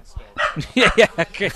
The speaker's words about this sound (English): A dog. Yep. There's a dog just there. Yeah, that's one of the dogs in the High Republic, that is.